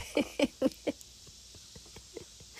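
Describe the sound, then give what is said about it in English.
A squeaky chair creaks in four short, mid-pitched squeaks at a quick, even rhythm, followed by a run of faint ticks and small creaks. No one speaks. “I'm sorry, I'm sitting in a squeaky chair.”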